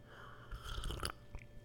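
A brief slurping sip of hot guayusa tea, a soft wet rush of air and liquid lasting about half a second, followed by a faint mouth click.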